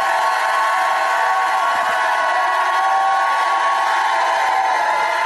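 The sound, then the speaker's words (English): An audience shouts to God together in a sustained, roaring wall of voices, loud and steady for several seconds with no single voice standing out. “Now, if you believe it, shout like you never shouted. Come on, give God a shout.”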